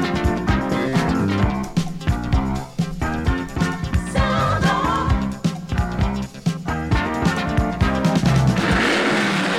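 A loud race car engine roars, revving hard and dropping briefly between surges as if shifting gears, with no voices over it.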